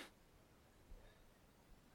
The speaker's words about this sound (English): Bless you. Thank you. Do you want me to cut that out? I mean, whatever you want to do. It's very adorable. You sneeze very cutely. I've been told I sneeze like a mouse.